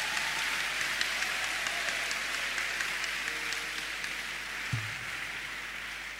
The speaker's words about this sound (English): let your hand clap be more powerful.